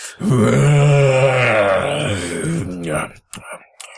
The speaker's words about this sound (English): So I start to do it, and then I start to yawn, but the yawn turns into like a weird like battle cry-ish thing.